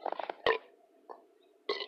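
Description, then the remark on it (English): A small, short burp rises out of quiet, with a few brief throaty bursts around it, fairly soft, with no talking. “You could do better than that. Baby burps.”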